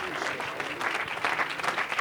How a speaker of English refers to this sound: Amen. I wonder, would you give that hand clap unto the Lord tonight? Come on, he's worthy. Come on, he's worthy. Hallelujah, hallelujah, hallelujah. Would you lift your voice? Would you hand clap tonight?